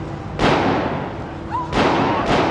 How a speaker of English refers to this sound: Is that gunfire?